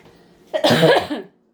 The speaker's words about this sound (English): I am so sorry. It's going to be maybe a little bit of a Smokey the Bear kind of coughing.